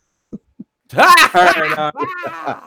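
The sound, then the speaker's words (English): A person yawns on air during a broadcast, a long, drawn-out voiced yawn, its pitch rising and sliding down, trailing into a second groaning stretch. Two soft, low thumps come just before it. “So sometimes this is the first time I ever yawned on the air.”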